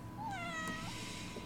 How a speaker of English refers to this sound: Come here, Claude. The cat is lonely. Can you meow? Probably not going to do it now that I've got you up to the microphone. Start purring.